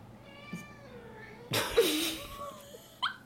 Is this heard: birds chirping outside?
no